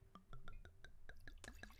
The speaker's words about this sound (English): Wine pour.